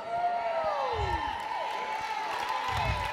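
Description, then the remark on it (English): A crowd of voices shouts and cheers loudly and continuously, with rising and falling whoops overlapping one another and a couple of low thuds underneath. “Let me tell you what's in order. Shouting.”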